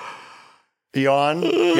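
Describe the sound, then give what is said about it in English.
A yawn from the game Yawn Fest: a long breathy inhale, a brief pause, then a drawn-out voiced groan that wavers in pitch before trailing off. “You can't miss the yawns.”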